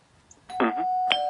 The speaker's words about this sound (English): Well, there's the bell. That means the pizza's here, so it's time to wrap it up.